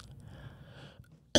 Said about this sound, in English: What kind of cough was that? That's a medicine call. Just making sure.